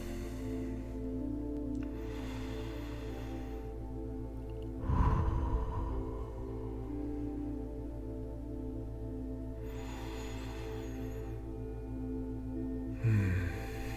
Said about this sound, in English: Try to bring your breathing in sync with mine. That's good. Deep breaths.